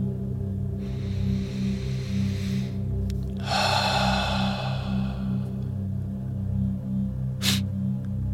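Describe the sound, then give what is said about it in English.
A slow, deep breath in and then a longer, louder breath out as someone sits on a bed doing breathing exercises, over a steady low hum, followed by a brief sharp click. “I slid the door, then sat on my bed, working on breathing exercises.”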